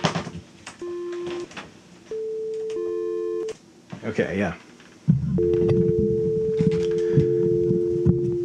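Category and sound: signal or alarm, telephone dial tone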